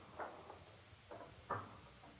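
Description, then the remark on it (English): A door is opened quietly in Mukden, Manchuria, with a few soft knocks and clicks from the latch and handle spread over a couple of seconds. The sounds are faint, with no voices. “Open the door.”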